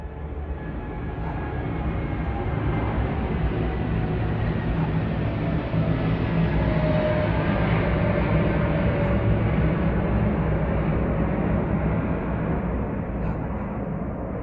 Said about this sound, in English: The issue of aviation noise is not just for those who live near airports. Over the past decade, many people who never had any planes flying overhead now live with airplane noise.